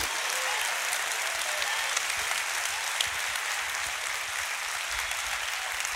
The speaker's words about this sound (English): By a round of applause and a shout of praise, if God has done that for you, can you say thank you, Jesus?